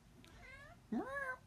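A cat meows twice, first a soft, thin mew and then a louder, fuller meow that rises in pitch, over a low background hum.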